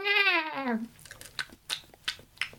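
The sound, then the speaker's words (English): A feral goat gives a short, wavering bleat that slides down in pitch, then chews while eating, with four or five crisp, crunchy bites at a steady, unhurried rhythm. “Yeah, that was a that was a feral goat eating one. Good goat chewing.”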